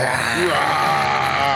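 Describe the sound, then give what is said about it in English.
Two voices let out a long, loud, gravelly roar together in imitation of a polar bear, holding one rough, steady growl for over a second without a break. “Can we get double the roar? I'll roar with you.”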